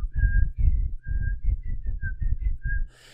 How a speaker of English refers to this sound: And there's one guy who whistles the same theme, you know.